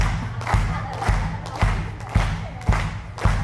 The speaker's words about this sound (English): Feel it? Now clap to the rhythm. Clap, clap. Feel like that DJ. One stomp. Two stomp.